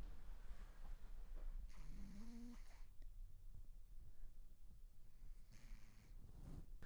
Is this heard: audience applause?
no